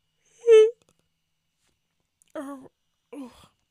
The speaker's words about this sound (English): I lost power last, sorry, big yawn.